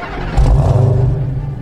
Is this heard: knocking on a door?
no